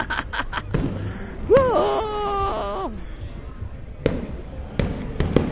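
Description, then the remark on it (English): Scattered sharp fireworks bangs and crackles go off at irregular intervals, some in quick clusters, with a drawn-out whining, cry-like voice rising over them in the middle. “Well, there it is, guys. There's the fireworks.”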